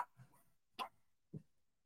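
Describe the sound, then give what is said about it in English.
A small dog gives two short, sharp barks about half a second apart, the second a bit lower and softer, heard faintly against a quiet background in a condo, with no talking. “We have this adorable little dog, Sophie, with us”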